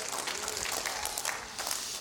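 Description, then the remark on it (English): An audience claps their hands in a dense, continuous patter of many overlapping claps, steady and moderately loud throughout, with no clear speech. “Come on, clap your hands.”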